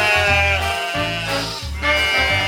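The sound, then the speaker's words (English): Sheep bleating loudly, several overlapping calls in quick succession with a wavering, nasal quality, filling the whole moment with no talking. “Of course, it was some sheep.”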